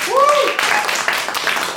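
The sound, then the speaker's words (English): A brief whooping cheer rises and falls at the start, followed by a steady patter of audience applause voting for Thag Simmons Institute at the end of a debate show, moderately loud and sustained to the end. “And if you thought Thag Simmons Institute had the stronger argument, applaud now.”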